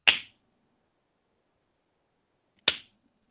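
Two sharp, crisp hand claps, separated by a pause of about two and a half seconds, triggering a Clapper light switch to work the lights. Each clap rings out briefly and then quickly fades, with silence all around and no talking.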